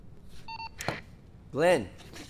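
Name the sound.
telephone keypad dialing tones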